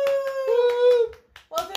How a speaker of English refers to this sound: is that clapping?